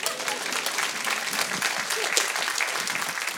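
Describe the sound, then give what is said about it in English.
An audience claps steadily for a few seconds, a dense, even patter of many hands at a fairly loud, constant level with no clear pauses. “You don't have to clap, but that is my point.”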